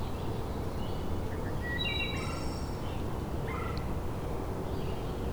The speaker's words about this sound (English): You might find wood thrush back here, which they have a couple sets of territories. I'm hearing a couple singing right now. Here's the wood thrush.